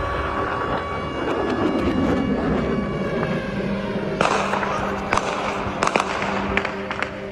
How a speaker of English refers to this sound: And just a quick warning here, there are sounds of explosions and gunfire in this story.